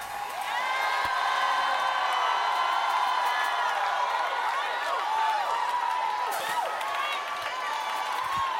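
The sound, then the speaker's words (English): A large crowd at a worship service yells and cheers continuously, many overlapping voices rising and falling in loud, sustained shouts and whoops that fill the whole stretch without pause. “Not a dance, but a yell.”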